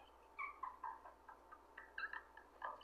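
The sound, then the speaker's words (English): A voice imitating a cat gives a series of short, high, quiet meows in quick irregular succession, with no talking over them. “That we over here making sound. Meow.”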